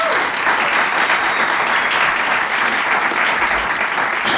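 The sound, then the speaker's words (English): Steady, dense applause from an audience welcoming guests, a continuous wash of many hands clapping at an even, fairly loud level throughout, with no voices standing out. “I would like to hear a nice warm round of applause for our guests here,”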